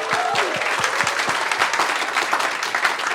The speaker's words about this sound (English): So why don't you do this for me and for her? Why don't you give her a big round of applause so it sounds good?